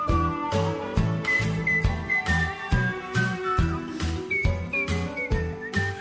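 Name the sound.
human whistling a tune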